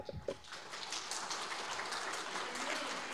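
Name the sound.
audience round of applause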